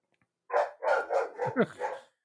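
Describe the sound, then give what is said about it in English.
A dog barks five or six times in a quick, excited run, each bark short, with some yippy pitch rises and no voices over it. “My dog also excited.”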